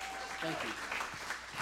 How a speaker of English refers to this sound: So, y'all, give Pastor Lynwood a round of applause, guys.